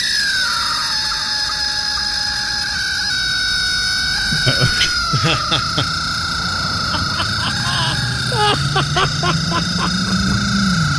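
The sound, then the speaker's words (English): A rubber chicken with its head broken off, stuck in a car's tailpipe, squawks: a loud, sustained reedy wail that wavers in pitch, broken by bursts of sputtering pulses, over a low rumbling engine drone. “break off the head and stick it in someone's tailpipe of their car. And this is what it would sound like.”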